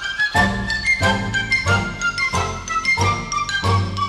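Sleigh bells jingle in a bright, steady rhythm over an instrumental backing with low, pulsing notes, the shimmering bursts repeating at an even tempo throughout.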